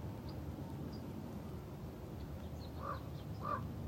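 Two hoarse raven croaks sound near the end, a short pause apart, over a steady low rumble of wind-like background noise. No one speaks.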